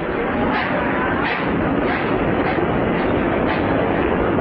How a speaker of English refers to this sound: On the platform, an official raises a sign, and the train starts to pull away, with crowds waving to their departing loved ones.